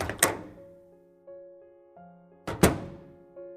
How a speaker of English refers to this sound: Somebody knocks on the front door